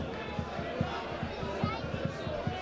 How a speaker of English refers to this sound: punching the ball into the ground, but then we'll go and retrieve it because we're behind and we want to not waste time.